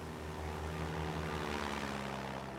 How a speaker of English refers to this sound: When they reach the tarmac, Sid says goodbye to Art, watches him climb into his Cessna, and start the engine.